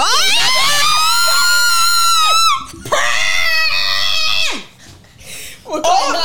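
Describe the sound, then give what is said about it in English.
Loud, high-pitched screaming from several voices, held in long excited shrieks, with a brief break before a second sustained burst and a shorter outburst near the end. “Why are we screaming?”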